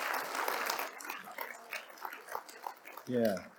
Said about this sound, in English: Can we just praise God one more time? You can do that clapping.